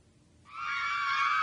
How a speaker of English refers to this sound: The girls are screaming.